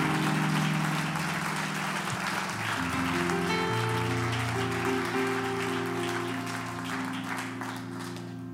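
An audience applauds steadily in a dense wash of clapping, while sustained organ chords hold and shift underneath. The clapping stays loud throughout and eases off only slightly at the end.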